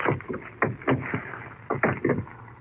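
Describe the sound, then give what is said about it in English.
Metallic clicking and rattling as a padlock is fastened on the door of an icebox, locking it: a handful of sharp, uneven clacks and scrapes, fairly loud, with no voices. “He had a padlock in his hand, Margot. He put it on this door.”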